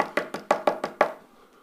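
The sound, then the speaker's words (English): A rapid series of about seven firm knocks on a door, evenly spaced and fairly loud, ending abruptly with a brief resonant tail and no voices. “And then all of a sudden there's a knock at the door.”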